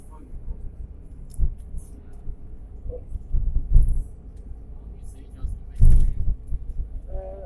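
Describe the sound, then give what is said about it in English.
A steady, deep engine rumble as a vehicle travels through a completely dark tunnel under the Singapore River, with occasional louder thumps and muffled voices underneath. “Because we're in the tunnel.”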